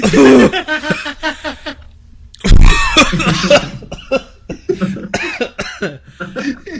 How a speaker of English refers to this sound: Here's the deal. It's the fucking, it's the gagging, coughing at the end that did me in.